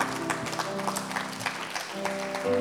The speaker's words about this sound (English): So let's give God's word a hand clap of praise.